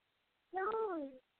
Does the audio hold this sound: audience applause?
no